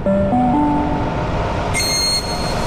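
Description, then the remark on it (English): A train at a platform in Sydney rumbles loudly and steadily along the rails, with a short rising electric whine at the start and a brief high-pitched wheel squeal near the end. No one speaks. “First stop, the train on platform.”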